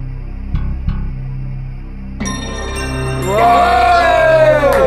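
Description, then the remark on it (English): Two dull thumps, then a big crowd cheer bursts in and swells louder, a dense roar of many voices that holds at full volume to the end. “And the answer was D, all of the above, as you might have realised from that big cheer.”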